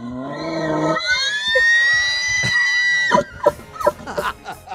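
An elk bugles: a low, reedy tone leaps into a long, high whistling squeal that wavers for a couple of seconds, then breaks into a string of short guttural grunts.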